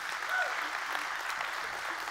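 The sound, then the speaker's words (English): A church audience claps hands together in steady, dense applause to welcome those joining online, a continuous crackle of many palms at an even level, with faint voices mixed in. “Can we put our hands together and give them a great big hand clap as well?”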